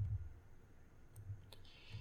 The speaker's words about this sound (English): And sorry for the typing, everybody. Justice 2. I'll say, if I do it on my phone, it's at least quiet.